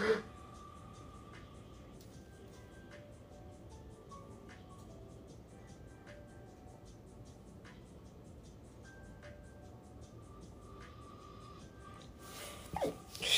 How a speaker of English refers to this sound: I got the fucking hiccups like a motherfucker. Fuck. We gonna roll through it though. Cause if I don't, I'll just fucking cancel this motherfucker. Shit. Hiccups are annoying. Let me see if I can ride it out. Hold on, let me try to hold my breath.